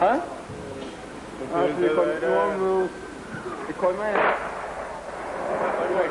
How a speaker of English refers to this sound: Grey sky, it was raining part of the artillery battery that was firing was inside Lebanon. It wasn't from Israel itself, but it was Israeli. Now you'll hear the UN reporting we're under shell fire.